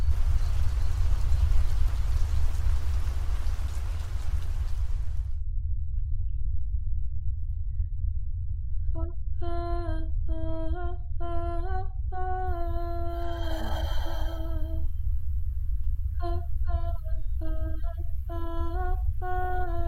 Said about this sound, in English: Act 1, Scene 3. A heath near forest. Thunder.